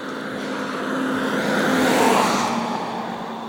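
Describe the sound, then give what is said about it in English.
A big truck playing a radio rolls past, its broad engine and road roar swelling to a peak midway and then easing off, with a steady tonal hum running underneath throughout. “Here comes a big truck playing this radio.”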